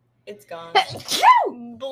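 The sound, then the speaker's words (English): A single sharp sneeze-like burst of breathy noise with a rising and falling vocal edge, with brief speech before and after it. “I'm gonna sneeze.”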